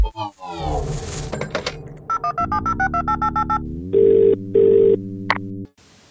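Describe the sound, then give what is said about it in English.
A burst of noise and a quick run of short electronic beeps give way to two steady telephone rings, followed by a sharp click as an answering machine picks up the line. No one speaks. “But right now, it's time for some voicemail, and this time, the answering machine says”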